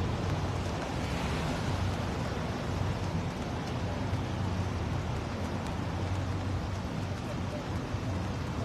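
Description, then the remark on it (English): A steady, even hiss of light drizzle in East Providence fills the whole recording, with a low rumble underneath and no clear breaks or individual drops standing out. “We got a light drizzle here in East Providence.”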